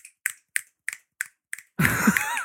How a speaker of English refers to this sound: And also, snaps. I'm not hearing enough snaps.